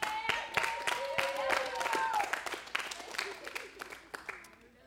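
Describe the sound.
A crowd claps in a steady burst of applause, with some voices cheering and whooping over it, and the clapping gradually thins out toward the end.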